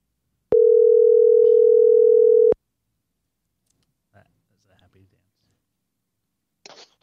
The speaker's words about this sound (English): We're going to make a phone call right now.